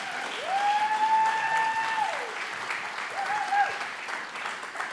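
A church crowd claps steadily and warmly for a panel of men from the church board for the full five seconds. A long sustained whistle and then a shorter second whistle sound over the applause.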